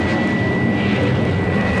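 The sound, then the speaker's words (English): A jet plane roars past at high speed, loud and steady throughout, a dense rushing rumble with a thin high whine riding on top, unbroken, with no voices. “Faster, faster, robot plane.”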